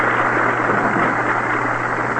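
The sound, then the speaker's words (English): A stadium crowd roars as Walter Johnson, Speed King of the Washington Senators, is introduced. The roar is a steady, dense wash of noise that holds at an even, loud level for about two seconds, with a low hum underneath and no voices standing out. “And of course, ladies and gentlemen, you heard the roar.”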